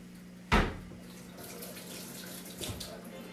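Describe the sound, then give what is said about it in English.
A kitchen tap is turned on with a sharp knock, then water runs steadily into a sink for a few seconds while hands wash under the stream, with a brief splash near the end. “I'll stop saying wash my hands. When you hear the water, you know what I'm doing.”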